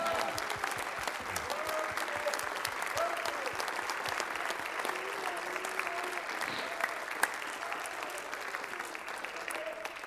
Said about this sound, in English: Somebody give the Lord a good hand clap of praise and say amen.